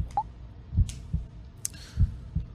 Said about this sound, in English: I probably can't get it on the stream, but there's an ominous heartbeat playing in the background.